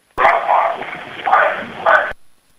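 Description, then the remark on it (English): A muffled, tinny dog bark or yelp lasting about two seconds, with three louder bursts, heard alone through a narrow, low-fidelity recording with a faint hiss underneath; an EVP recording captured during an investigation at the Tenney Gatehouse, where no dogs were present. “you got that that dog EVP I sent you? If you can you play that, please?”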